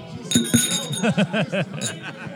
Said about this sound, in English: There goes the bottle.